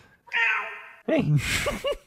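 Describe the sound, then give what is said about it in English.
A cat named Sasha meows several times, starting with a long, steady drawn-out cry followed by a quick run of shorter, rising and falling mews over noisy background. “All progress stops when there's a cat.”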